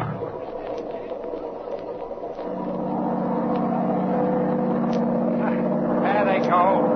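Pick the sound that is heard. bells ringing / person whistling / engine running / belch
engine running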